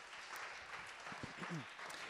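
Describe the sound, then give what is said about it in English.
An audience claps steadily to thank a speaker, a dense wash of many hands at an even level throughout, with a few faint voices murmuring underneath near the end. “Feel free to clap, yeah, if you want to.”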